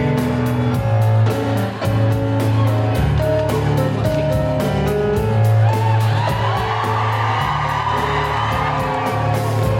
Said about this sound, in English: Big round of applause for the cast of Suffragette!